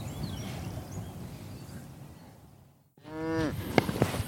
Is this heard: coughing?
no